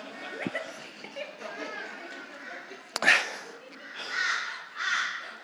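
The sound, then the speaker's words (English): Voices imitate a crow, letting out three harsh, raspy caws spaced over a few seconds, with soft crowd murmur and a sharp knock in the background. “So I want to just, anyone good with crows?”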